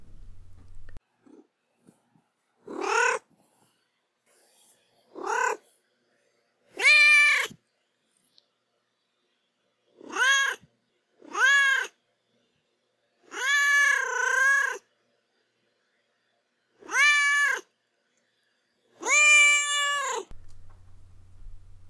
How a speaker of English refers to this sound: Now is the time for Duarte's Corner, when I give my cat Duarte a moment to express his feelings about the book.